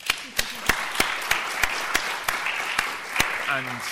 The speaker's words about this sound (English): That was a great discussion, I think. Round of applause to them.